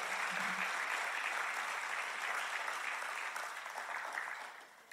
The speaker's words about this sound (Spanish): Vamos a aplaudir con ganas entonces.